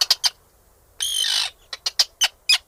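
An Arctic tern calls with a harsh, grating screech lasting about half a second, framed by sharp, high, clipped kip notes, three quick ones before and four or five spaced ones after, with no talking.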